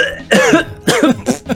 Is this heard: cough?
yes